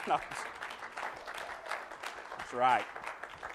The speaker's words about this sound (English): thanks to our wonderful AV crew back there in the booth, don't they do a fantastic job for us back there? I'm sorry, some of that was just kind of polite clap. That was just like, oh, I guess so. No, y'all really did. Make sure you, that's better.